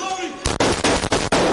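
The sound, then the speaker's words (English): A rapid burst of loud, sharp gunshots, about five in quick succession after a brief quiet moment, each crack bleeding into the next with a harsh, echoing roar, as police officers on a second floor open fire on a shooter. “Then, they open fire.”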